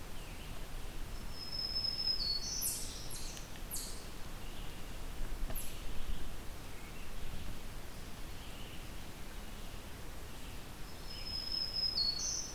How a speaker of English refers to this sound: Oh, it's a second black-throated green warbler.